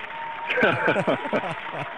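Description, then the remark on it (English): A round of applause sound effect given for Perry Noble, with steady dense clapping that fills the whole two seconds at an even level, while voices sound over the top of it. “I wish we could give him like a round of applause or something like that.”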